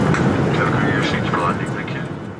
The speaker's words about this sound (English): So we'll do that in a few minutes once the plane has landed.